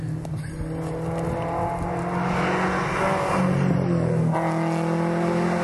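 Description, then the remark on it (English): A Porsche 944 S2 engine revs hard and rises in pitch as the car goes down a hill, its throaty, barking drone shifting as it sweeps past, with steady harmonic tones and a sudden step up near the end. “It's got a bit of a bark to it.”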